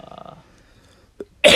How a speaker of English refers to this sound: Yeah, but I got this cough.